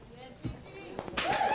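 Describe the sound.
A voice is briefly heard before a burst of audience applause swells in, a dense, noisy wash of clapping and cheering that grows louder and holds to the end.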